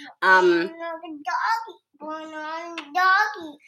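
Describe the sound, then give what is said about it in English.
A toddler chatters about doggies in several short, high-pitched, sing-song bursts with brief pauses between them, clear, with no adult voice audible. “Yep, there's my toddler. Talking about doggies when I'm talking about the directory.”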